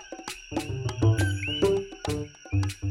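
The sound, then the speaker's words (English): A coqui frog calls with short rising chirps over a dense, buzzing night chorus of frogs and insects, loud, with steady high tones running throughout. “the Coqui. We first met this very special frog in episode 11, and even heard a legend about it from its native Puerto Rico.”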